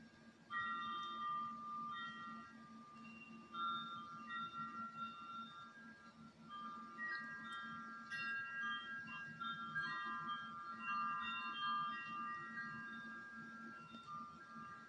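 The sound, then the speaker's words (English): Wind chimes ring steadily for about fifteen seconds, their bright, overlapping metallic tones at several pitches sustaining and blending over a soft, constant low rumble, with no one speaking. “Oh, those wind chimes sound so pretty.”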